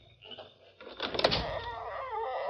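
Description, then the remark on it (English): A door is opened: a click and clunk followed by a grinding, rattling slide that carries on for a second or so, fairly loud over a quiet background. “And open the door.”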